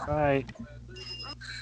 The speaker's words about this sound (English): They keep playing the DQ10 chime. Is that what that is?